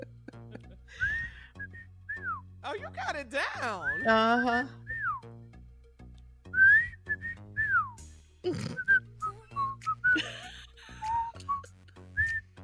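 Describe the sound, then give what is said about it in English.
Someone whistles a TV theme tune, a run of clear melodic notes with bends and slides, while other people talk and react over and between the phrases. “Not whistling.”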